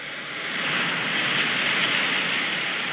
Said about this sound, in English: Ocean waves crashing.